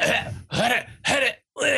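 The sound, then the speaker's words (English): Someone clears their throat in four loud, gravelly bursts separated by brief pauses, with no talking around them. “No, I'm just clearing my throat.”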